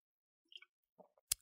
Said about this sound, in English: I'll take a sip of my Red Bull to confirm.